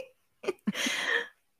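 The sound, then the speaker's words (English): A quick fart made on demand: two brief low blips, then a half-second airy, sputtering release that trails off, with no voices alongside. “That was a good little fart.”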